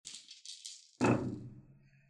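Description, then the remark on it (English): A bunch of dice, rolled all at once, rattles in a cupped hand with bright, clicking shakes, then spills onto a table in a loud clattering burst that tumbles and settles over about a second. “You can just roll a bunch of dice all at once.”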